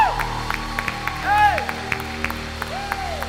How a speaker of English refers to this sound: Somebody take 30 seconds, clap your hands and begin to praise Him. Praise Him.